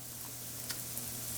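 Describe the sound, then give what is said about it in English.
Hen of the Woods mushrooms, browned golden, sizzle in a hot pan that is smoking, with a soft, steady hiss, broken by a couple of faint crackles. A low hum sits underneath, and no one speaks. “Do you hear that sizzle that sort of sounds like a little much?”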